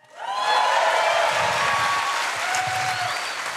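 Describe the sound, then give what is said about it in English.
Audience applause after an announcement of hiring investigative journalists swells quickly and holds steady, a dense wash of many hands clapping with a few faint cheers or whistles mixed in. “It's kind of you, but nobody claps for investigative journalists.”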